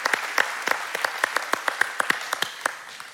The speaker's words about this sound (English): Just stand briefly, let me show you. All right, let's give a round of applause to all those folks.